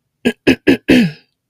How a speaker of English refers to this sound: No, I don't have a cold. Just in case you missed that, I was actually clearing my throat intentionally.